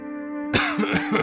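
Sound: man coughing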